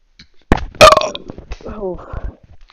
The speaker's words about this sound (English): Good thinking. I'll just belch really loudly.